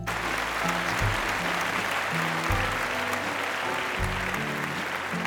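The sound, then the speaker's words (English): Huge, continuous applause from a large crowd for a performer on stage fills the whole stretch, loud and dense, with deep sustained musical notes shifting underneath it. “Huge applause, resounding a thunderstorm.”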